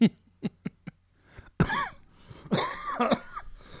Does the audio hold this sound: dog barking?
no